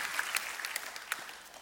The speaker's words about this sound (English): Come on, clap your hands by faith.